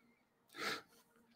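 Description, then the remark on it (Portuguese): A single sharp sneeze bursts out, a short breathy explosion lasting a fraction of a second, with quiet background before and after. “Espirrar.”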